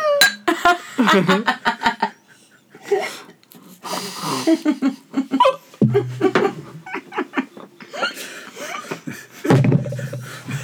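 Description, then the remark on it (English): Glasses clink together in a toast, sharp bright taps ringing out amid laughter and chatter from several people. “Can we cheers? I want to hear it.”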